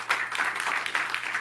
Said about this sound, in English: Give her a hand clap.